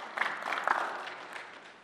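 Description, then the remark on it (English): An audience at a church service applauds steadily, many hands clapping in a dense, even patter that holds at a moderate level before easing slightly toward the end. No voices are heard. “I think you're clapping because I'm almost done, right?”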